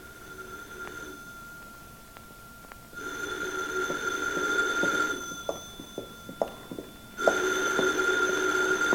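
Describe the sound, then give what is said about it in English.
A telephone rings repeatedly in long bursts separated by pauses, a steady high-pitched electronic trill with a few faint clicks and knocks in the gaps between rings. “Why don't you get the phone, Myers?”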